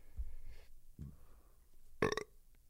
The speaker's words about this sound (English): No, we're not redoing the burp bit. Yeah, actually, you know, I'm going to try to get more listeners. So maybe burping into the microphone's not like current.